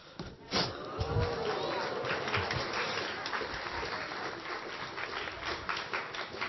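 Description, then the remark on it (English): Audience applause after a magic trick in which a volunteer held up a chosen word, a steady wash of many overlapping claps that holds at an even level for several seconds, with faint murmuring voices mixed into the crowd noise. “Thank you for those who clapped.”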